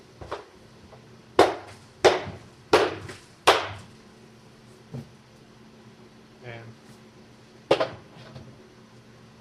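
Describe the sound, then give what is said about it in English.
A new Amazon Basics mini coffee maker being handled in an office: a quick run of loud plastic clacks and knocks, a quieter pause with faint fiddling, then one more sharp snap, with a brief word spoken. “Hold on a second. I got a new coffee maker.”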